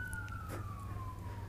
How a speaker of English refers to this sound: We'll just wait till the sirens go by for a moment.